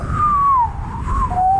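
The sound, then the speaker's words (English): A thin, wavering whistle drifts slightly down in pitch, breaks off, then resumes briefly, like someone trying to whistle a tune and not quite managing it. No talking. “I might have lost my whistle.”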